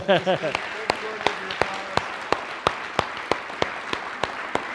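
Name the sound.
audience applauding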